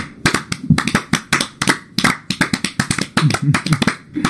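A group of people clap together on a count of three in a fast, slightly ragged burst of sharp hand claps lasting a few seconds, with faint voices mixed in underneath; the clapping is done so the recorded audio can be synced.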